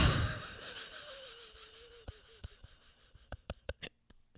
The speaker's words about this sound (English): Why am I breathing so heavy?